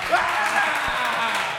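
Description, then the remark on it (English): A crowd, asked to applaud, bursts into applause and cheering, a dense, steady wash of clapping and voices that holds at an even level for about a second and a half. “Yeah, when you ask people to applaud and they do it, they love it.”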